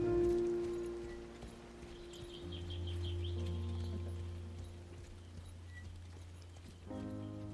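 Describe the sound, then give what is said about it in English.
Steady hooves of a ridden horse clip-clop at an unhurried walking pace over a low droning background, with faint rhythmic ticks running throughout; no voices, fairly quiet. “You keep on your horse and or your war pony, and you're riding along”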